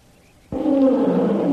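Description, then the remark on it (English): After a brief hush, a tiger's roar bursts in suddenly, loud, a deep rumbling growl that holds steady to the end without fading. “Say, did you hear that? Tiger.”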